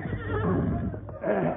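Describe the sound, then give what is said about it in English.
A horse whinnies loudly, a wavering, quivering neigh that dips briefly before a second strained burst rises at the end. “Get you to my horse outside.”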